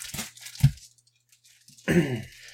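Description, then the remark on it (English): Two quick, heavy slaps of sticky fudge smack a surface about half a second apart, then a pause before a brief voice joins a final, messier squelch. “You hear that? It's son of fudge being slapped.”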